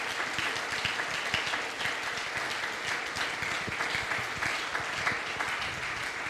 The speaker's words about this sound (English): I want you to clap your hands and thank God for what he's going to do.